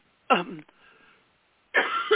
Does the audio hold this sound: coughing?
yes